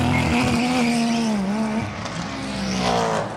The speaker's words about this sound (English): Sorry, very loud cars going past you as I was trying to talk to her there.